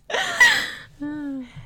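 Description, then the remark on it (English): A single sneeze, a sharp breathy burst lasting under a second, followed by a short voiced murmur afterward. “oh, shoot. Gesundheit.”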